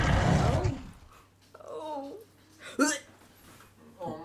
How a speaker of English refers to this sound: And it's about 1 o'clock when everybody hears Asa Serena roar.